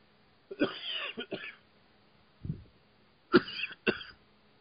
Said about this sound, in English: I was coughing, so I had to mute.